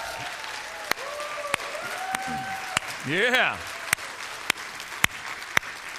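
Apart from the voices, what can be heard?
audience applause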